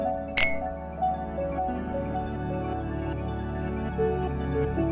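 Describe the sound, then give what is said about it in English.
A single bright clink of two glasses of gin touching in a toast, sharp, ringing briefly before fading into a steady, low tonal background with no voices. “He pours us both a glass. Cheers.”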